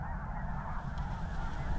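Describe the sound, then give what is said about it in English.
A dense, continuous chorus of snow geese honking, many birds calling at once in a steady overlapping clamor with a low rumbling background. “Snow geese are strange.”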